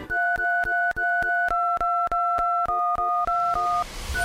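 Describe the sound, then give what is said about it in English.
A tune of Jingle Bells tapped out on a phone's telephone keypad tones, a quick run of clear two-tone beeps in a rhythmic pattern, each press marked by a sharp click, fairly loud with no talking. “Can you play Jingle Bells using your keypad?”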